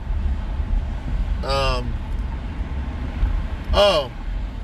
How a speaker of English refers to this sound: I'm in traffic again, as you guys know, because I'm in the car